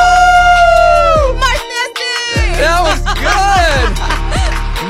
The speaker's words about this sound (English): Crowd's going wild.